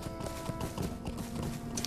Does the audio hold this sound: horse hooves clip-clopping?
yes